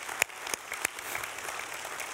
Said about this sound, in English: I want to give them a clap, shall we? Just appreciate them. They're wonderful people.